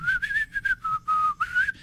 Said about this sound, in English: Then I give him the universal audio notification. Try whistling.